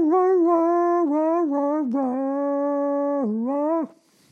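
A dog howls along with a man's singing in one long, sustained, tuneful wail that steps up and down in pitch, loud, for about four seconds before cutting off.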